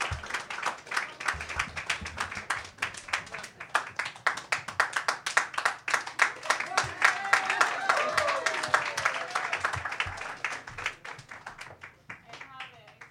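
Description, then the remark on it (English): A crowd applauds steadily for about twelve seconds, dense overlapping claps with a few cheers and murmurs mixed in, tapering off near the end. “Thank you for the constant clap.”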